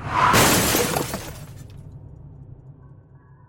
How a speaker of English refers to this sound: It takes him a moment, but he sees a black SUV in front of him driving in reverse at high speed. The red taillights are approaching quickly, and before he has time to react, he hears the collision and is knocked unconscious.